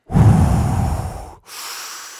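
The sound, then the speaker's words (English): Slow, deliberate box breathing to calm the heart: one long, full airy breath, a brief pause, then a quieter, steadier breath continuing. No talking. “Yeah, just very box breathing, very slow breathing.”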